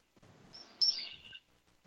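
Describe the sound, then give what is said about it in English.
A raven call rings out once, a short, bright, slightly harsh cry that slides downward, preceded by a faint softer note. It stands alone, with no talking. “let's get the Raven back in.”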